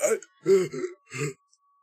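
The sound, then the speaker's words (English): A voice imitates someone gasping for air while being choked with a forearm under the chin: three short, strained, breathy bursts, fairly loud, separated by brief silences. “And he gasps for air.”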